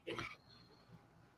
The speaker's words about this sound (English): What are you barking about?